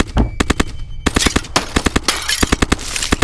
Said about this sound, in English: As bullets are shattering glass inside the back of the car. This isn't a police vehicle. This is just Jerry's car. You're feeling the glass shattering in the back.